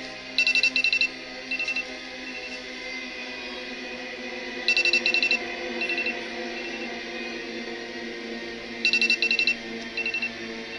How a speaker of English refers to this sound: So I guess their phones are going off, and this is the final scene of Leave the World Behind.